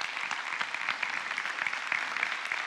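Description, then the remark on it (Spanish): An audience applauds God steadily, a dense wash of many hands clapping at a fairly even loudness with no voices rising above it. “Un fuerte aplauso a nuestro Dios, a nuestro Señor, a nuestro Salvador.”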